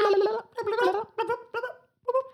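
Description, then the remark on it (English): Voices make a rapid, warbling gobble like turkeys, in five quick bursts with short gaps, fairly loud, with no clear words. “Kind of sound like turkeys.”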